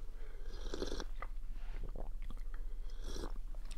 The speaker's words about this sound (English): Is that going to burn me? Let me get a little hot water in me.